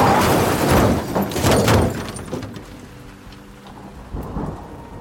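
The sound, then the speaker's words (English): Heavy rain pours down steadily with a deep rumble of thunder rolling through the first couple of seconds, then the loud downpour continues alone, with no voices; the rain that began as Arigo was driving on 11 January 1971. “Because on the 11th of January 1971, very soon after, Arigo was driving, when it started to rain heavily.”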